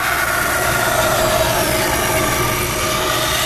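A rotating belt sander runs steadily against aged wood, sanding cut-out parts for lampstands with miniature ducks: a continuous loud grinding whir with a high, slightly shrill edge that holds an even level throughout, with no one speaking.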